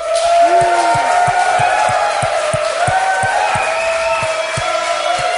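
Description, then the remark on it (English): A loud crowd at a beer and food pairing tasting claps and cheers steadily to vote for the beer pairing, with whoops and shouts rising over a dense wash of applause that holds at a roughly even level throughout. “All right, so walking through this, why don't we give it up on the amplified clapping Yahoo meter if you guys preferred the beer with this tasting.”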